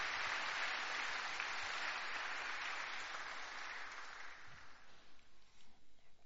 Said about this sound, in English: So you can just applaud the leaders that God has appointed here. Let's just honor them. Amen.